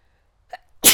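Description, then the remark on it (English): A single forceful sneeze bursts out after a brief sharp intake of breath, loud and sudden, with no talking around it. “I need to sneeze.”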